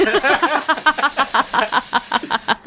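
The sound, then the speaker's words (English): A voice imitates a snake-like hiss as the character Zenobia hissing at Roderick, a steady breathy sibilance laced with rapid, rhythmic voiced sputters that pulse for a couple of seconds before cutting off. “Because she's hissing at him.”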